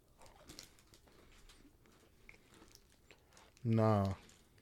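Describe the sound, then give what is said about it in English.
Someone chews a crunchy Special K strawberry pastry crisp, with irregular crackly crunches repeating for a few seconds, then a short, loud voiced sound breaks in near the end. “A strawberry pastry crisp. From Special K. So we gonna bust this down.”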